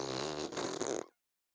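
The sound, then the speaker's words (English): A voice imitates a fart with a buzzing, sputtering mouth noise, one sustained blat about a second long, fairly loud, ending abruptly into silence. “I'm gonna keep using my mouth fart sounds.”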